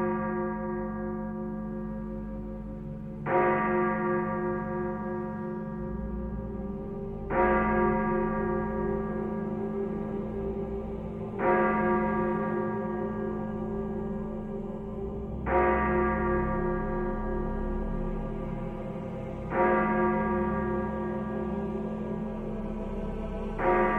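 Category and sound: signal or alarm, church bells ringing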